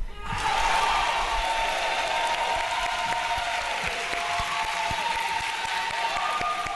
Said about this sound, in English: we can have a big dignity party right now, because when I'm done, I expect you to clap like you lost your mind.